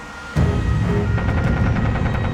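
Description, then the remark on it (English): A rapid series of sharp gunshots from a machine gun mounted on the back of a truck, firing at an ambulance, cracks out over a heavy, rumbling din, coming in quick, fairly regular bursts that sound close and loud. “And we started hearing gunshots.”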